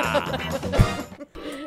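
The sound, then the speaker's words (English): David Carew's goat lets out a wavering, nasal bleat that lasts about a second, followed by a brief pause and a shorter, fainter bleat. “It's David Carew's goat.”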